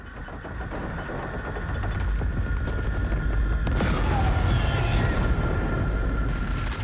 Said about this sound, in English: And down smashes the helicopter in an epic, fiery explosion of just hellish proportion. It is amazing.